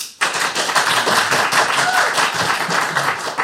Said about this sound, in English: I'm going to have to ask you to decide who's going to win this one. Clap now if you think it's going to be Lex and Thunderbird 3.